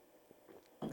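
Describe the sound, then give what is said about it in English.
Quiet mouth sounds of someone sipping a drink from a chalice, with a few soft slurps and a louder gulp or swallow at the very end, no talking. “Let me take my first sip from the chalice.”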